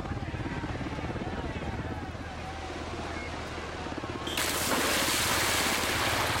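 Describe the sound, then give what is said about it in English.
A Navy firefighting helicopter's rotor thumps in a steady, rapid chop, fairly loud, and then a sudden broad roar of rushing noise swells over it for the last couple of seconds. “Word is now that the Navy has been called in to airdrop one of those helicopters that puts out wildfires full of iced tea into this man's gullet.”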